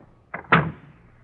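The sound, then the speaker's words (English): A door swings shut as guests leave, with a soft latch click followed by a firmer thud, fairly loud, then a faint lingering room tone as the sound dies away. “I'll see you to the door, Osgood.”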